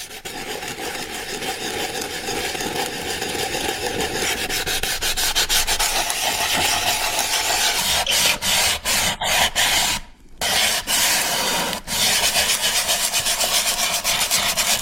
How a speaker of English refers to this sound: Oh no. It's sanding and varnishing a wooden box.